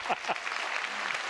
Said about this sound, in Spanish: Aplauso de golf, por favor. Ese aplauso de golf.